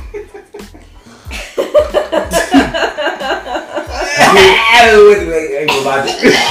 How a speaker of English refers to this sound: course I start coughing.